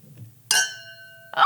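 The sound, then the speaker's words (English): Two glasses clink together once in a toast between two women, loud, leaving a bright ringing tone that fades over most of a second before another noise cuts in. “That was a top-notch cheers.”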